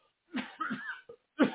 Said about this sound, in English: And excuse me while I clear my throat for 1 second.